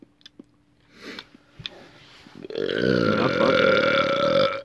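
A few soft mouth clicks and chewing noises, then one long, loud, drawn-out burp lasting about two seconds, resonant, with no talking.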